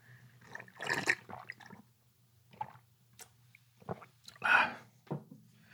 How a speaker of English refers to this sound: excuse me, I'm pouring myself water. It's hard to multitask at the moment. All right, it's coming out of the bottle now. There it is.